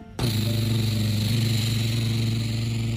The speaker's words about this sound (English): As the helicopter zoomed over the mountains, right over the bad guys, they started to dump all ton of water on top of the volcano.